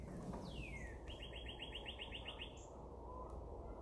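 A loud bird sings outside a window: a sliding whistle followed by a quick, even run of about a dozen bright repeated notes, clear above steady outdoor hiss, with no one talking.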